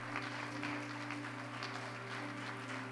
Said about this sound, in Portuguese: pode aplaudir o Senhor.